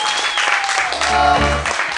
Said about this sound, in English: Anyway, I want to thank you all for coming out to watch this show, East of the Rockies, supporting local comedy here in San Francisco, and Mutiny Radio. Give yourselves a round of applause for being a great audience.